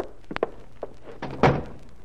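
A door swings shut with a solid thunk, preceded by a few small clicks and knocks of handling, the closing impact heavy and close by.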